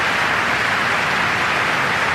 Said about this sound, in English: Today, they include leaders who have developed the anti-COVID vaccines. And it's a round of applause.